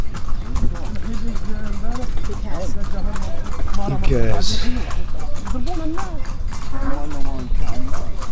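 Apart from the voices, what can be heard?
horse hooves clip-clopping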